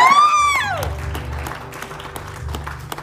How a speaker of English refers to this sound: She says he's put a call on my life to be a mentor to pastor's wife so they can learn how to do ministry in marriage. I thought somebody would applaud for that.